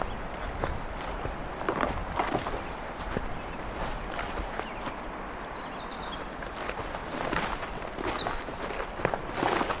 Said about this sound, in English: Seems more like a cicada, though. Up a tree. And it's non-stop.